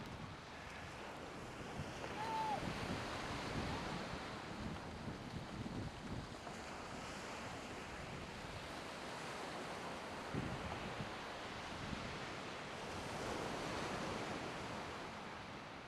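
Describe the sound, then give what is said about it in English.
Ocean surf roars continuously, a dense wash of breaking waves with wind buffeting the microphone, swelling slightly louder at moments, with no voices present. “Beautiful watching the ocean right now.”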